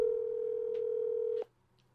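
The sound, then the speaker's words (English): A single steady electronic ringback tone from an outgoing phone call, holding for about a second and a half before cutting off, heard clearly on its own with no talking. “I might call him right now. You want to call him? If he answers, let's do you want me to see if he answers?”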